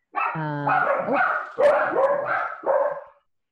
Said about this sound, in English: Puppies.